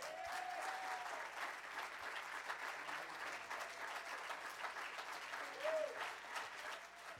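Sustained applause from a large crowd welcoming the speaker Mario Murillo, a dense continuous patter of clapping filling the space for several seconds, with a couple of faint whistles rising above it.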